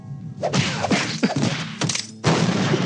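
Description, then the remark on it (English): After a build-up, a man starts punching people: a rapid flurry of punches lands with heavy thwacks and thuds, several loud hits in quick succession mixed with swishing whooshes, ending in a sustained burst of crashing impact noise. “There's like a build up and then he starts punching people.”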